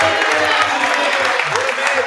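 An audience claps for a young guest praised for being raised right, in a steady, dense burst of applause lasting about two seconds, loud and even throughout with no clear pause, with a low murmur underneath.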